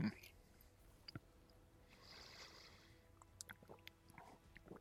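Soft chewing: quiet wet clicks and squishy mouth noises come in irregular bursts over a faint background hiss, with no talking.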